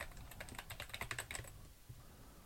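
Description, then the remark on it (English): Rapid clicking of keys on a computer keyboard as someone types an OpenID URL into a registration page, a quick burst of typing for about a second and a half that then stops, leaving a low background hum. “All right, let's give this a try by going to our registration page and typing in an OpenID URL.”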